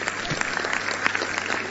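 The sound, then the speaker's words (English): An audience claps steadily throughout, a dense, even patter of many hands at moderate loudness with no gaps and no clear voices on top. “You can clap if you...”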